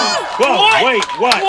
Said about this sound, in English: What happened? What are they screaming about? I don't know, because probably somebody donated a bunch of money. I hope. A lot of cheering.